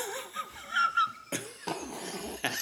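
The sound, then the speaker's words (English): A sneeze: a wavering, wheezy breath builds for about a second, then several sharp, explosive bursts of noise follow, fairly loud, with no talking. “God bless you.”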